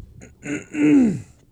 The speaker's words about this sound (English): I had to clear my throat, sorry. I could tell.